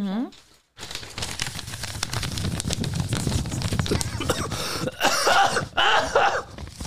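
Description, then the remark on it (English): A couple of harsh coughs near the end from a person with a lingering cough of three weeks, following a stretch of low, indistinct vocal sounds and throat noise. “I have a little bit of a cough as well.”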